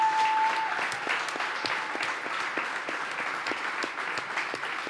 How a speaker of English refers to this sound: So give all these guys a round of applause, please.